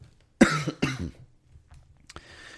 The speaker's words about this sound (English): See, they're making me cough. It's like they hear me.